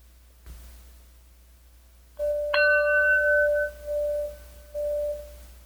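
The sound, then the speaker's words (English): A single bell is struck once to begin a Mindful Minute meditation, its clear ringing tone hanging in the air and slowly fading over several seconds against a faint low hum, with no voices. “We'll get started at the sound of the bell.”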